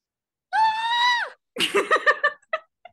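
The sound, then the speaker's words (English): People scream in reaction: a loud, sustained high-pitched scream rings out for nearly a second, then breaks into a rapid series of shrieking, laugh-like bursts that taper off into short yelps. “Everybody's screaming right now.”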